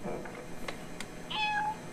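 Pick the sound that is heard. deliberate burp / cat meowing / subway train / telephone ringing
cat meowing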